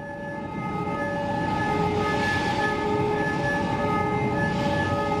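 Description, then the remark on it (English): Heavy rail cars carrying scrap metal, such as shredded automobiles and railroad wheels, rumble and grind along tracks to a steel plant's electric arc furnace while a steady, tonal alarm blares continuously over the clatter, loud, with no talking. “Alarms blare as it's carted along tracks to the plant's electric arc furnace.”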